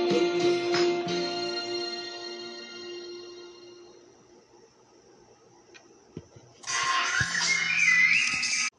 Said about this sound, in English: Sorry about that. My phone rang just as I ended it.